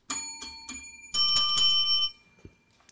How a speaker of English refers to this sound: I'm so happy I have my own bell now.